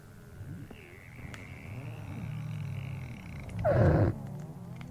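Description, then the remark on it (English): Underwater recording, made off the coast of the Antarctic, of ice melting in the Antarctic summer: a low, steady rumble scattered with faint crackles and pops, swelling into a louder fizzing burst near the end before settling back. “This is the sound of the ice melting in the Antarctic summer.”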